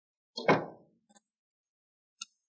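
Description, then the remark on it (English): A back door bangs with a heavy thud that rings out briefly, followed by two small latch clicks and a final sharp click a moment later. No one speaks. “So I'm blowing out of here through this back door.”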